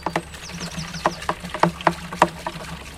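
Liquid splashes out of a watering can onto shoes in a series of irregular, wet spattering bursts, with faint high chirps in the background and no one talking.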